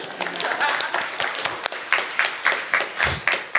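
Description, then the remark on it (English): An audience claps for themselves, applauding steadily for a few seconds, dense overlapping hand claps with a few sharper individual claps standing out, at a moderate, even loudness. “Clap for yourselves.”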